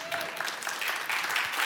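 An audience claps in a steady, dense burst of applause that fills the short moment at an even loudness, with a faint murmur of voices mixed in.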